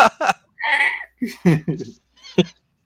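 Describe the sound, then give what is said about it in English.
A man's voice imitates a pig for the character Piglet being beaten, letting out a quick series of squealing, grunting bursts, with one longer squeal and a few short choppy ones, fairly loud. “Yeah, when Piglet's getting his ass whooped and he's making those noises, like, oh, it's a pig.”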